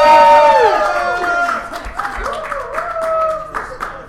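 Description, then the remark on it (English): A crowd breaks into steady applause for participants called to the front of a Great Nerd Debate event, dense clapping running throughout, with high whoops and cheering voices rising over it at the start and trailing off in scattered shouts. “Is there a participant round of applause?”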